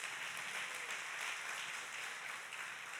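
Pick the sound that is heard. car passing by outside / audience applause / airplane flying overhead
audience applause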